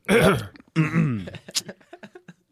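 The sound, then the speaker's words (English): A person loudly clears their throat twice into the microphone, the second rasp longer and gravelly, then trails off into a series of small clicks and short throaty grunts. “Clear your throat to the mic a lot.”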